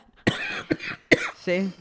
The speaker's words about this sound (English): You may hear some coughing tonight.